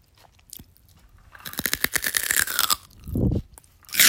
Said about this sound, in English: so, like, here, enjoy some ASMR of us eating celery with peanut butter. And cream cheese. Wait, don't get us chewing, get the bite.